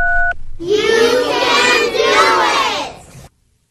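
A single short phone keypad tone beeps as a pep-talk hotline is dialed, then after a brief pause a group of kindergartners shouts loudly together for a few seconds before cutting off.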